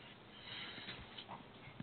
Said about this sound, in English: Hey, so get out of there. I'm sorry. Yelling at my dog.